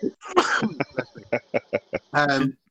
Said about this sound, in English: Sorry? I'm going to sneeze. Hold on.